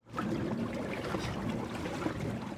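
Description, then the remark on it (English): A steady, even wash of river water streaming past eight vessels, led by the gunboat USS Cayuga, gliding upstream at 3:30 a.m. on April 24th, a continuous soft rushing with faint trickles and no voices. “For 10 brief minutes, the only sound on the river are these eight vessels gliding upstream.”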